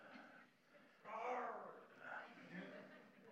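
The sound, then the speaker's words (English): A group of children imitate a lion's roar, their high, thin voices rising together in a couple of overlapping bursts that sound more like mewing cats than a real roar. “Verse 8, the lion has roared. Kids.”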